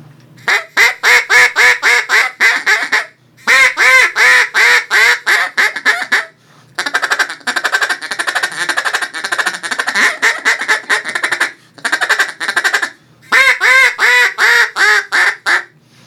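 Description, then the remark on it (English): A duck call blows loud runs of rhythmic quacks, then breaks into a long, rapid chattering stretch before returning to quick quacking series, with no talking. “that's, you know, there's different ways to chatter, different ways to quack, you know.”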